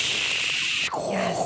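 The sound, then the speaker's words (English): A coffee machine's grinder grinds beans steadily with a loud, harsh, high-pitched whirring buzz that shifts abruptly in tone partway through, turning lower and grittier as the beans break down. No one speaks. “That's not dial-up modem from 96. That's my machine grinding beans.”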